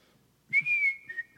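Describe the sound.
Someone whistles a short, clear melody, a steady bright tone sliding between a few sustained notes with brief breathy attacks, no talking.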